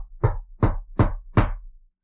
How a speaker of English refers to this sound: And then you see a man in a cool black suit walking towards the lighthouse. And you hear a knock on the door.